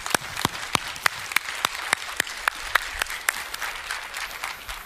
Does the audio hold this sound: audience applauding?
yes